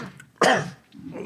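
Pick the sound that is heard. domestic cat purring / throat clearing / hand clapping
throat clearing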